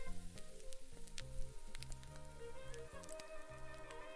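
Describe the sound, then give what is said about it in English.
Pork schnitzel sizzles steadily in a frying pan being used for the first time, a continuous crackling hiss dotted with sharp pops and spits, with a faint low hum underneath. “Christening my frying pan with some pork schnitzel.”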